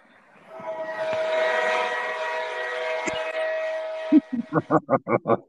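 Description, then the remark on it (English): A train sound effect: a loud, sustained train whistle blares with rich harmonic tones for several seconds, then gives way to a quick series of rhythmic chugging bursts as the locomotive pulls away. “Ladies and gentlemen, all aboard the Justin Fields hype train.”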